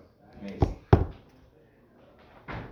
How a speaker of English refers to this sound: Close the other door. Maybe leave that door open and close their door if anyone's coming up there.